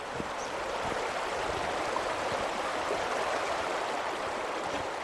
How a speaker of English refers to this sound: I walk to the middle of a small wooden footbridge, right above the narrowest part of the gorge, and watch the river endlessly shoot down, a bottomless supply of crystal clear water.